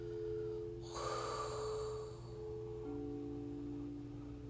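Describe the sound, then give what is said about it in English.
One deep breath, sunk low to the diaphragm during a breathing exercise, is blown out in a breathy rush that fades over about a second. A steady low hum runs underneath, and no one speaks. “So in this space, you take a deep breath and sink that breath low, as though you could feel your diaphragm getting low, and blow that air out.”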